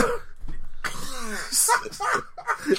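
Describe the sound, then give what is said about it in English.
A fairly loud cough comes in bursts, followed by some throaty voiced sounds and breathy noise, with no clear words spoken. “I'm scared of cough than I am the aliens.”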